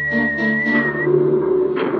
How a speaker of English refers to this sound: I think that's all the whistling you need to do for a little while.